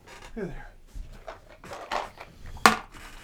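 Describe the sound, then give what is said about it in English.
A twenty-sided die (D20) is rolled, giving a few soft rattles and then one sharp, loud clack as it lands on a hard surface. Faint voice sounds murmur underneath. “D20 for preparation, and I need you to battle. I need my dice.”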